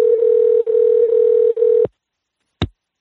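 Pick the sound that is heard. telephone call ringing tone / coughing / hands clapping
telephone call ringing tone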